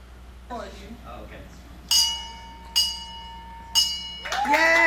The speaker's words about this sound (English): And was able to ring the bell at the end of his treatment, which it looked something like this.